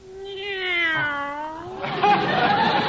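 A cat named Minerva meows twice in quick succession: first a long, clear, drawn-out meow, then a rougher, raspier one, both loud with no other sounds around them.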